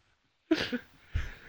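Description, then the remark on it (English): Two fairly loud coughs from a single person, the first harsh and breathy, the second following about half a second later, with no talking around them. “Cough.”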